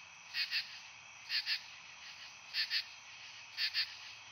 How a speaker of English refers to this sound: Then in September, there are the katydids.